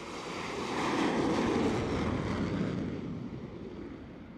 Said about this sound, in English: Then, the front wheel of the plane is attached to machinery under the deck, the catapult, which literally flings it off the edge of the deck like a pebble from a slingshot.